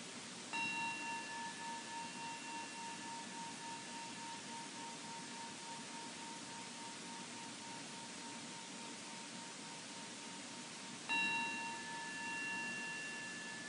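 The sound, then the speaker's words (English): A meditation bell is struck twice, about ten seconds apart, each strike leaving a long, bright, sustained ring over a soft background hiss; the first tone fades slowly before the second rings out. “But here, you can just receive the sound of the bell.”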